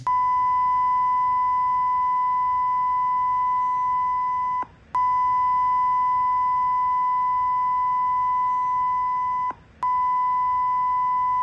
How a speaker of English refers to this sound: can you like say it and we'll beep it out? No, I'm joking.